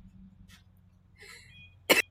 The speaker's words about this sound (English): I'm trying my hardest not to cough, so if I periodically mute, it's because I'm dying.